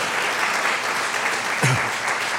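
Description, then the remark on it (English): A church audience applauds as a clap offering in a steady, sustained wash of clapping that fills the whole stretch, with a brief vocal shout rising out of the crowd partway through. “Come on, give them a good clap offering.”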